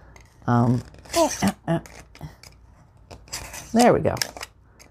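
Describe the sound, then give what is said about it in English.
Thin material is sliced with a blade along a cork ruler in two short, scratchy strokes, while a person hums and murmurs softly between and over the cuts. “Using the cork ruler so it doesn't slip. We don't want to lose any appendages. You could also use scissors here. It's not that thick.”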